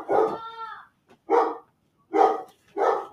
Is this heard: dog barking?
yes